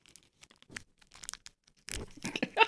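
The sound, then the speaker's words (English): A Snickers candy bar wrapper crackles and crinkles, starting with sparse, sharp little snaps, then a louder, denser burst of crinkling and tearing toward the end. No voices. “I got to give you get that nice little crackling. Oh, that's loud.”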